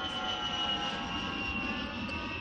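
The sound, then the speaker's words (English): A loud, steady landing airplane engine roar with a high whining tone, sustained throughout. No voices. “Just like when we get people calling in and talking longer than they should be, we hit them with the airplane. Hit them with the landing plane.”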